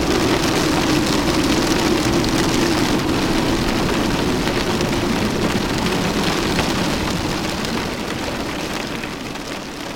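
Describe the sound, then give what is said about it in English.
A fierce hail: a dense, steady downpour of hailstones pelts surfaces in a continuous loud roar, with a low rumbling undertone, easing slightly toward the end. No voices are present. “And then the silence is drowned out by a fierce hail.”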